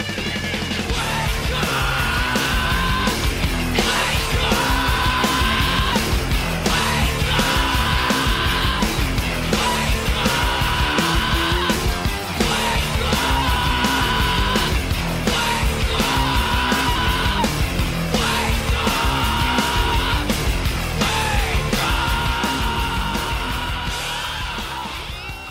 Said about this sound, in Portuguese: E aí você entra na parte final da música, cara, que ele fica gritando desesperado.